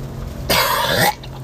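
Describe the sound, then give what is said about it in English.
A single harsh, rasping cough-gag bursts out for about half a second, a throaty retching hack that stands alone with no talking over it. “And this is a constant cough gag.”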